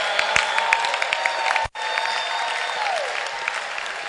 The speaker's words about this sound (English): Clap your hands for the Lord. Are you giving the Lord a wonderful clap offering?